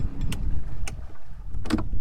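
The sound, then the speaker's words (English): A fishing boat's engine idles low and steady on the flats off Grand Bahama, winding down as it is switched off, with a few short splashy washes of water breaking over the rumble. No voices. “Cecil killed the engine, and it was time to fish.”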